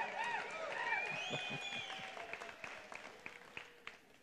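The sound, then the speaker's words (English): A church audience claps steadily and cheers, with whoops and a few high whistles rising over dense applause that gradually thins out toward the end. “You know, the more you cheer, the quicker I get started, and the quicker I get finished, and the quicker you get out of here.”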